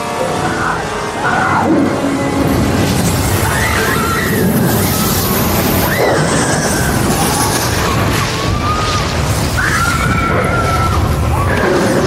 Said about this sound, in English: Why is she screaming? She just got fucking eaten by a dog. She doesn't have a face.